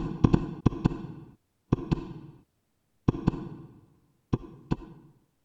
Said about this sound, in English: Now, again, hark. Louder, louder, louder, louder. Villains, I shrieked, dissemble no more. I admit the deed. Tear up the planks here, here. It is the beating of his hideous heart.